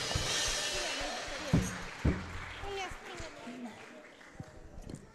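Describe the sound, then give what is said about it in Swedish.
Audience applause for the boys at a worship gathering, a dense crackling wash of clapping that is loudest at the start and gradually thins out, with a few sharp thumps and voices calling out over it. “Killarna, riktig applåd.”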